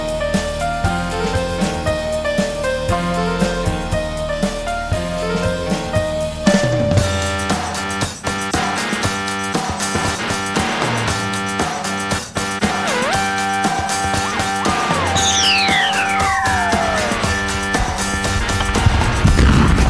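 sound effect, explosions

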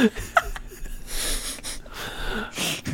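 human body sound, yawn

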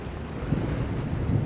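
nature, thunder and rain

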